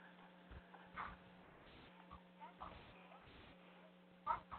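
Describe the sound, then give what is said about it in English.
A dog whines faintly in short, high-pitched bursts, the clearest near the end, over a steady low electrical hum with some muffled background movement. “Poor dog, gotta take a piss or something.”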